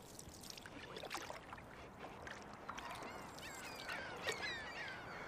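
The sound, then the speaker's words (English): Two crows caw, diving at and harassing an owl in a tree, while about 12 gulls fly in circles calling, over a steady wash of water noise. The harsh cries overlap, several birds sounding at once, with no one speaking. “Two crows are just screaming at him, like, or her. Diving at it, harassing it. And then there's like 12 gulls flying in circles, yelling.”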